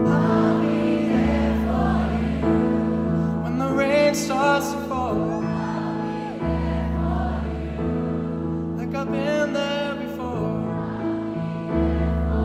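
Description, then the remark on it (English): A large concert crowd of thousands in Melbourne, Australia, sings along with a live pop song, many voices blending into one loud, continuous chorus over the band's steady backing. “Decided to play the Friends theme song, I'll Be There For You, as the crowd sings along in Melbourne.”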